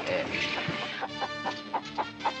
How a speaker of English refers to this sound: Yes, these hens have been fed a straight diet of onions for the past 6 months.